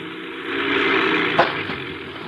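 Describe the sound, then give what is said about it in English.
A seaplane engine drones steadily as it lands on a lake and taxis, a broad rushing hum that swells slightly, with one brief thump about halfway through. No one speaks. “I bring the plane down and land it on the lake.”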